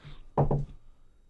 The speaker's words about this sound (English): I knock. You have a knock on the door.